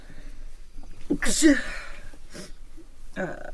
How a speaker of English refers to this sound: Bless you.